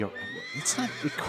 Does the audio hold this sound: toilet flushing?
no